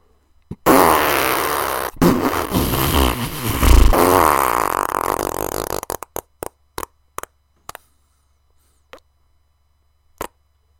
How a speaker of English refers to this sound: As if the boy were a balloon and the air was suddenly escaping from his rear end, as it indeed was, Booty Beecham literally rose at least a foot straight up off his chair.